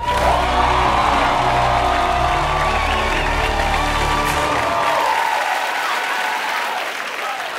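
The Daily Show studio crowd breaks into loud, sustained applause with cheers and whoops as Roy Wood Jr. is introduced to deliver the show's annual State of the Black address, a dense wash of clapping that stays strong for several seconds before thinning slightly at the end.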